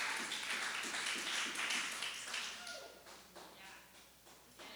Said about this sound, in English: So give me a clap for getting through that.